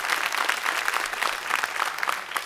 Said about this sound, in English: Say amen. Amen. Come on, come on. That's a sad hand clap. Come on, people. Come on.